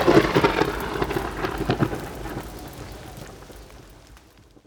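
A loud rumble of thunder rolls over steady, hissing rain, peaking early and then slowly fading away into the downpour.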